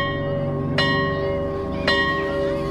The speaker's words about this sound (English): And, of course, everybody started to head towards the door and the teacher said, "Sit down. It's not recess yet," and a few minutes later the bell went off.